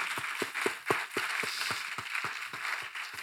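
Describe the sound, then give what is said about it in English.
Steady rhythmic hand clapping in church, roughly four sharp claps per second in an even beat, continuing throughout over a constant hissy background wash. No one speaks. “Want to clap? Let's clap. I'm clapping in church.”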